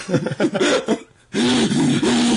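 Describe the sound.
A voice imitates a cyclist's heavy, strained breathing during hard riding: a rapid run of loud, rasping pants with a groaning, whimper-like tone. It pauses briefly, then resumes with longer, drawn-out heaving breaths.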